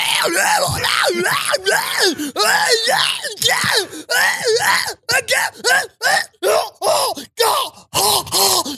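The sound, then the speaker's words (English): A person imitates the screamed vocals of a rock song, belting strained, growling yells in rapid, loud bursts that rise and fall, ending in choppy clipped shouts. “I can tell you how half of the song's going to sound.”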